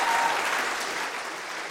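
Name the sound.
audience applause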